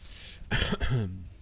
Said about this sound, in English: That was me clearing my throat.